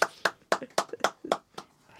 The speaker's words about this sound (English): The East Leeds Community Radio smattering of applause. There aren't so many people in the studio